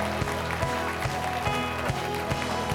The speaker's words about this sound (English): Let's give an applause for the people that just received of God and got set free.